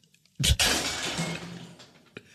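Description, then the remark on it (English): A loud, sudden crash of a plate breaking, with a sharp impact followed by a bright spray of shattering ceramic that rings and tinkles away over a second or so, plus a faint final clink. “A plate exploded.”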